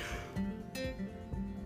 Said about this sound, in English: Oh, I'm so sorry for that yawn. It is early. It's like 4 something in the morning, but I still keep myself together.